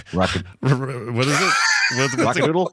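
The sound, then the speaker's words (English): A person's voice imitates a rooster crow, like the rooster from the animated film Rock-a-Doodle, one long, strained call stretched over a couple of seconds after a short vocal burst, fairly loud. “to be the rooster from the animated... there you go.”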